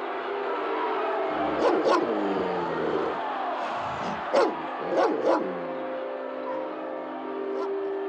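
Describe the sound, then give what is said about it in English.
Two dogs fighting to the death in a dirt pit bark in short, sharp bursts, a handful of loud barks and yelps spread irregularly over a dense, steady background of men cheering, trainers screaming and indistinct voices. “Two dogs fighting to the death in this pit while men cheer and two trainers scream into this dirt pit that these two dogs are fighting in.”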